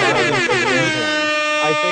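A loud, blaring air horn blast sounds for about two seconds, its brassy tone holding steady with a slight wavering pitch partway through and no talking.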